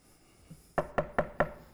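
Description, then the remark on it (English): Four firm knocks on a wooden bedroom door as a mother knocks on her son's door on a Sunday morning, evenly spaced in a quick rhythm, clear against a quiet room with no one speaking. “Mother knocks on the door of her son's bedroom on Sunday morning.”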